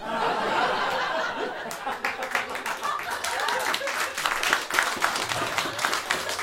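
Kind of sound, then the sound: crowd, audience applause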